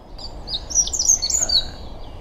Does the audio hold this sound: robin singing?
yes